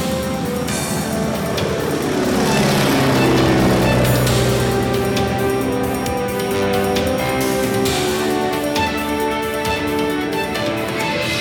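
A small airplane engine drones loudly and continuously in flight, its buzzing tone wavering and shifting in pitch over a steady rushing roar, with no voices.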